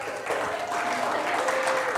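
An audience claps steadily, a dense, even wash of many hands sustained at a fairly loud level for the full two seconds, with no voices standing out.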